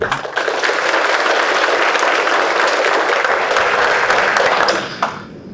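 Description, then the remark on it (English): Sustained applause from family and friends in a courtroom, applauding the defendants, steady and fairly loud for about five seconds before tapering off into a few scattered claps and quiet. “All right, now I know again there are a lot of family and friends in here, and I ordinarily wouldn't do this, but if you want to applaud the defendants and all involved, you may do that at this time.”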